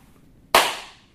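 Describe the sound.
A single sharp, loud crack made by a voice imitating a chair collapsing, snapping in suddenly and trailing off quickly into quiet.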